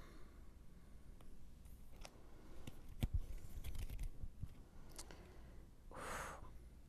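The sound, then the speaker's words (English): Playing cards are shuffled back into a player's library during a trading card game: a run of soft papery clicks and flicks, then a brief rushing riffle near the end, with no one speaking. “Well, none of those are three or less, so all of this gets shuffled back into my library.”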